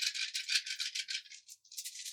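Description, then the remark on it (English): A handful of six dice rattle and clatter in a quick, bright, continuous burst, with a brief pause before a final shake. No one speaks. “I've got 6 dice, and I need the top card of the upgrade deck.”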